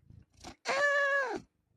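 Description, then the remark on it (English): A cat gives one drawn-out meow, clear, lasting under a second, after a couple of soft, brief chirping sounds. No one speaks. “Did you just hear that meow?”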